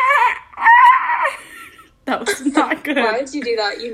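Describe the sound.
A voice imitates a dolphin with high, squeaky whistles that rise and fall for about a second, followed by a short pause and then lively talking and laughter.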